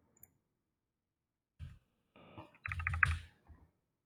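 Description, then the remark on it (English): Keys clatter on a computer keyboard in a quick, uneven burst of typing while running a JSON viewer web project, moderately loud, with a couple of isolated taps before and after and no one speaking. “Oops, if I can, my keyboard not mess up would be great.”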